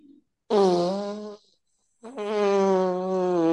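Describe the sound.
A voice imitates a fart with two loud, drawn-out buzzing blasts separated by a brief pause; the second one is longer and steadier, and it's close and alone.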